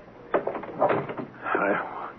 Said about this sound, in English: Now, let's close the door.